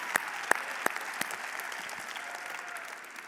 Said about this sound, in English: So can we give them a round of applause? Because that was really good.